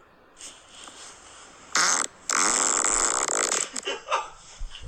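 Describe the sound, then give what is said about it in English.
A loud fart in two bursts: a short blast, a brief pause, then a long sputtering, rippling one, trailing off into a few softer puffs. No talking. “All right, let's keep going through these farts.”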